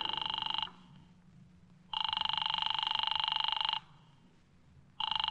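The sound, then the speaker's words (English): A telephone call to Diamond's office rings repeatedly with no answer, long buzzing bursts separated by pauses, heard clearly as if through a receiver over a faint background hum. “His office don't answer.”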